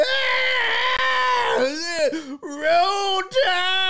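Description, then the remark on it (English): A person screams loudly and continuously at the top of their lungs, the raw, strained voice rising and falling in pitch with only brief catches of breath over about four seconds. “Do you really want to listen to somebody just scream at the top of their lungs?”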